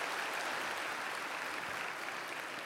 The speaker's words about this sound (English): It was so amazing when, as I was greeting people at the door, just to see how many people dressed up and looked so beautiful. So I think you should give yourselves a really good round of applause.